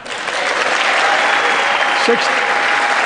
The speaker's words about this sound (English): Yeah, wait for the, you gotta wait for them to clap, Joe.